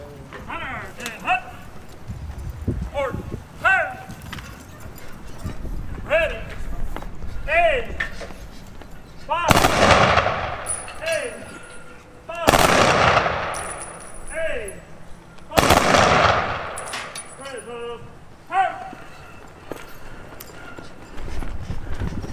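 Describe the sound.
Three loud rifle volleys from a firing squad, spaced about three seconds apart, each a sharp crack with a ringing tail. Voices murmur faintly before and between the shots.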